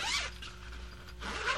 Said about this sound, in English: It's a pop-up kennel for a dog. And it has the zipper.